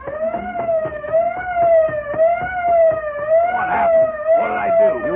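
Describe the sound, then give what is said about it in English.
A truck's auto alarm system, set off when the lock was broken open, blares continuously, a loud, steady wail whose pitch rises and falls slightly, with faint rattling knocks underneath. “That fool, he's broken the auto alarm system.”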